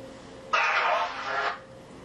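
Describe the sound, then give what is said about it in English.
A spirit box app on a phone plays a brief, tinny burst of garbled, backwards-sounding words, about a second long, fairly loud against a quiet background. “And you guys probably remember how the spirit box works. It says things backwards on the phone, which is right here.”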